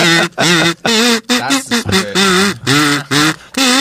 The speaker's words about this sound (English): This is a fart whistle.